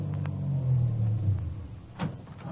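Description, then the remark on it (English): A car engine rumbles low as the car slowly pulls away from the curb, its steady drone swelling slightly before easing, with a brief scuffing burst near the end and no voices. “I started my car away from the curb slowly, keeping him in sight.”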